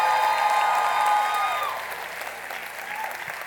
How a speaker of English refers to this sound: Great achievements. Let's give them another big round of applause.